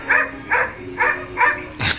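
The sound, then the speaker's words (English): A dog named Pal barks five times at Duke in a steady, evenly spaced rhythm, each bark short and fairly loud, the last one slightly deeper and rougher, with no one talking. “That's Pal talking to Duke.”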